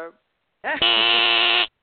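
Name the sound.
game show buzzer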